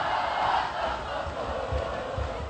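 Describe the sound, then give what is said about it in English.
The Milford home student section cheers and yells en masse at a Milford Eagles versus Loveland Tigers football game, a dense, steady roar of many voices that holds loud throughout with slight swells, no single voice standing out. “You would think it's 17-13 the way the Milford student section is into this.”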